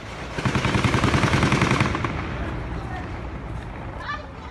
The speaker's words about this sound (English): In this one, the camera points at a well-kept strip of lawn with a busy road beyond. But people are running, yelling, taking cover. And all the cars are trying to move in reverse. Then the gunfire begins.